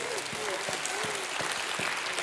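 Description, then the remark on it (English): An audience claps together in a steady burst of applause, giving God a hand clap, many hands sounding at once, with a few brief voices murmuring underneath. “If you're thankful for that, give God a hand clap.”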